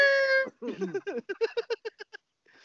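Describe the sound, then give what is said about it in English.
A person imitates a cat, holding one long nasal meow and then breaking into a quick run of about a dozen short, clipped mewing syllables, fairly loud. “Meow. I'm gonna get you. Meow.”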